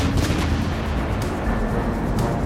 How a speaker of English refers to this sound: Fiona and Harsh will carry it to the door, and then Julie will load it into the cannon and fire it at Parliament.